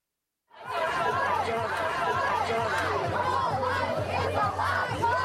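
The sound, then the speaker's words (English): A large crowd gathered outside the Supreme Court in anticipation of the Dobbs decision chatters and murmurs continuously after a brief silence at the start, many overlapping voices forming a dense, steady wash with occasional louder shouts and bits of laughter. “Outside the Supreme Court, where every day crowds have been gathering in anticipation of the Dobbs decision.”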